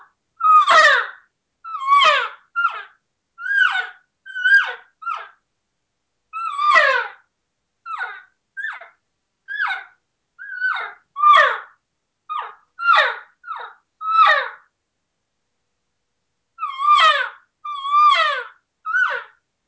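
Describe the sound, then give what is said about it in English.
Around eighteen short, high, nasal elk calls blown on a latex diaphragm call as a demonstration run of calls, each a quick mewing chirp, repeated at a steady pace with one brief pause near the end. “The more layers of latex, definitely, if you're not used to it, it does take a little longer to learn how to use it.”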